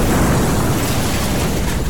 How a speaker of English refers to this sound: But right before it hits that car, you hear it. A flash of fire ignites the front end of the truck, sending it flying up into the air.